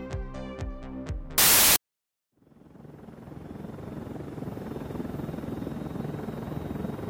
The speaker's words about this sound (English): I can't believe Sebastian sent a helicopter to pick us up. This is awesome!